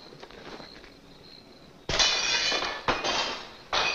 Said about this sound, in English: but there's a stuntman offset waiting with a baseball or a rock or whatever to throw it through a window and shatter it for Donna Reed. But she did that on her own. She didn't need any help.